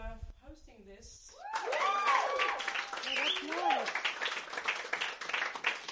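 A crowd bursts into sustained applause after a brief spoken phrase, dense clapping joined by whoops and cheers that stays loud to the end.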